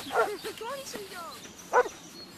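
A dog barks twice, sharp, with a gap of over a second between the barks and softer whiny vocal sounds in between.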